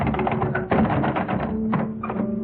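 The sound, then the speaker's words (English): A door handle is turned and jiggled against a door locked from the outside, giving a few clattering metallic clicks and rattles over a steady low background hum. “And I walked quietly to the door. And I turned the handle.”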